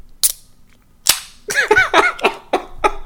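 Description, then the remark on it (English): A can cracks open with a sharp, loud snap, followed by a second crisp pop and a brief trailing hiss, then a run of quick, pitched bursts of sound. “I gotta crack one open for my dog Tanahashi.”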